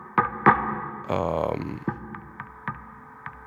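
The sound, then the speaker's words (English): Hollow knocks on part of a wooden desk or stool, EQ-filtered on both sides and processed with Valhalla vintage reverb, a valve compressor and an Audio Thing megaphone plug-in, sounding thin and distorted, about six uneven hits with a buzzy, sustained rattle in the middle. “Part of a desk or something, or like a stool. That's it. And then I EQ'd it, filtered it on both sides.”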